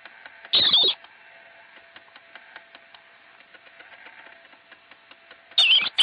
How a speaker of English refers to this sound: In fact, let's listen to a marmot scream because we have a little clip.